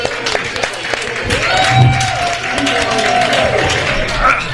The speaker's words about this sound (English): Thank you, Jeff. Round of applause for Jeff Belanger, everybody.